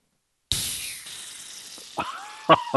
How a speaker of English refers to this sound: They say chill for 3 hours, carefully open can, wait for the head to rise, and then pour into glass. There you go. So we're going to open this up. We're going to hear this nitrogen pop.